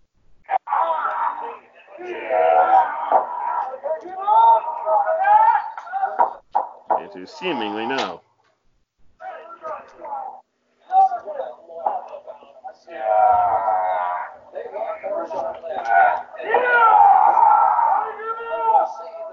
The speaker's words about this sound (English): There's a whole lot of yelling in this match. I must say that. It makes up for the crowd noise.